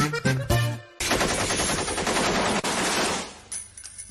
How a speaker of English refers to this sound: 500 balazos.